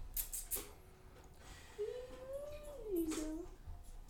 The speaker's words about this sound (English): Squeaky little cat